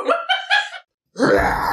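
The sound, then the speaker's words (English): A person imitates a roar: three quick, groaning vocal pulses, a short silence, then a loud, rough, breathy roar that holds steady until the end. “But before we do let you go, though, give us your best roar.”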